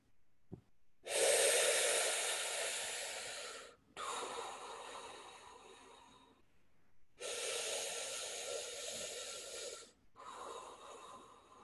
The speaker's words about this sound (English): So you're not gonna go like really like forcefully. You're just gonna purse your lips a bit and just, and breathe out slowly, smoothly, and consistently, like an ocean sound of the wave, okay?